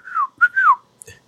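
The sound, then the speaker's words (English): A low, gliding whistle in two sliding phrases, each bending downward in pitch, clear, followed by a brief faint rustle at the end. “That low whistle.”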